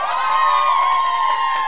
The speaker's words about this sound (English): Wow, that's some big applause for you.